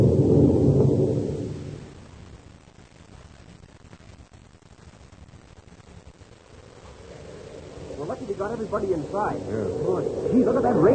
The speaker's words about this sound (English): it's a bad tropical storm, Chuck. Almost like a hurricane